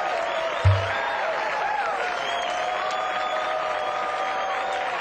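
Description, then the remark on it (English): A large studio audience claps steadily for the whole stretch, a dense, even wash of applause with a few sustained cheers and whoops mixed in and one dull thump near the start. “That's a long clap break.”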